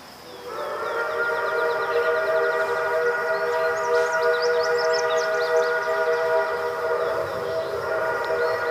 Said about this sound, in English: He's listening really high gain. He can hear the wind in the trees, little insects coming. And he knows there's a train down there someplace, right?